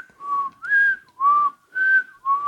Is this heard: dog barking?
no